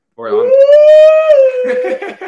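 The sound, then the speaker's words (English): A voice imitates a loon call: one long, loud wailing tone that rises and holds steady, then breaks into shorter wavering, laugh-like sounds at the end. “where this guy tells this story about like sundown in the Adirondacks, and then he ends it with, and then you hear the call of the loon, and then it plays.”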